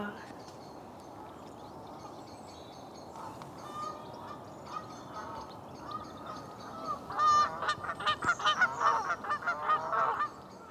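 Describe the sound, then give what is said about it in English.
Canada geese honking, starting faintly and swelling into a burst of loud, overlapping honks over the last few seconds, with a steady outdoor murmur underneath. “and they'll write in and tell us what these calls are, but I'm going to stick my neck out and say that might be a Canada goose.”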